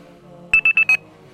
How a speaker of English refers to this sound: Oh, he woke up from his alarm. Yes, are you there still? Or you woke up from the alarm?